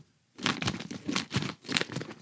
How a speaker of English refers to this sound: Well, I feel very honored to have them in front of me. I'm going to open this vacuum sealed package and give one a try.